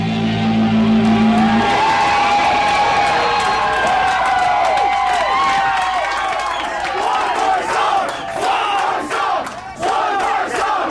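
A large concert crowd screams and cheers at a band on tour, a dense, loud wall of shrill voices with sharp individual shrieks rising and falling throughout, sustained without pause.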